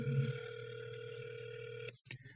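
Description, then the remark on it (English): A telephone rings with an incoming call, a steady electronic tone lasting nearly two seconds, then cuts off abruptly into a brief rustle. It is clear, with no talking. “Oh, well, I'm actually getting a call.”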